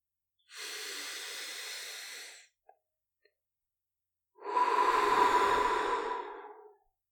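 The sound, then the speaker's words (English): A slow, deep breath: a long airy inhale through the nose lasting about two seconds, a pause, then a fuller, louder exhale through the mouth of similar length. Clear, with no talking. “So, taking a long, slow breath in through the nose and out through the mouth, we're just going to observe our body and invite it to relax.”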